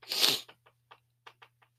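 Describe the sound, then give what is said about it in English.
A big, wet sniffle made after stepping back from a microphone: one loud, breathy rush of air through the nose, then a few short, faint snuffling clicks trailing off. No talking. “I hope you all caught that big sniffle right there that I just...”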